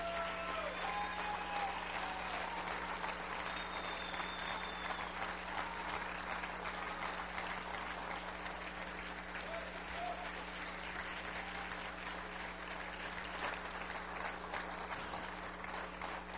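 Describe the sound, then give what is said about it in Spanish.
An audience claps in praise of the Lord, steadily and continuously, a dense, sustained wash of applause with a few faint voices and cheers mixed in underneath. “Alaba el nombre del Señor con un aplauso en esta hora.”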